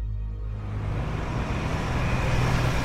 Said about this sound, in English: Traffic's not a problem there, except for the big rigs that lumber through town on their way to the loading docks and yards throughout the state and Midwest and all corners of the country.